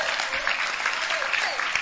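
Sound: audience clapping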